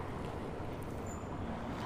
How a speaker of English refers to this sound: And I'll stop now with his car going by.